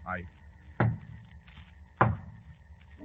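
Two firm, hollow knocks on a wooden door as a signal, spaced about a second apart, against a quiet background.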